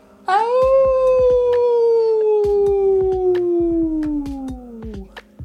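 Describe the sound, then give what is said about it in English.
A single long, loud howl from human voices imitating a wolf howling at the moon with heads thrown back, rising sharply then slowly sliding downward for about five seconds, with a few faint clicks and noises underneath. “Now throw your head back and howl at the moon.”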